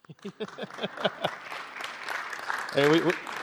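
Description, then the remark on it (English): A crowd claps in a quick, steady rhythm for about a second, then the clapping blurs into general room noise, with a voice calling out loudly near the end. “Hey, we got no rules against clapping, amen, shouting out.”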